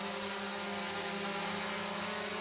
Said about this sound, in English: it might be a little hard to hear now, but that's because we have a drone going on in here